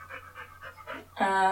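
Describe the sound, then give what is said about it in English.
A puppy, Maya, pants in quick, rhythmic breaths, about five in a row, before a short, tonal whine-like sound cuts in at the end. “Well, playing, like, animals like Maya, this beautiful puppy.”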